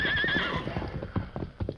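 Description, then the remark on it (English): Horse hooves clip-clop in a quick, irregular patter while a bronc lets out a shrill, wavering whinny at the start, then steps keep thudding along. “Here's your bronc, Bill.”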